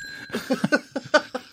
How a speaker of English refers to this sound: I told you, do not touch my bell.